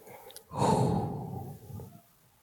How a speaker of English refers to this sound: Listen, that was our first breathing technique that we've done, okay?